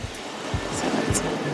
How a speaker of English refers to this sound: It's early, about 7 a.m., so the streets are pretty quiet, save for the sounds of airplanes overhead and the rain, which is slowly getting heavier.